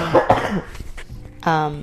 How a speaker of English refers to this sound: I had a terrible cough. I still do, as you can hear by my voice. It's better now.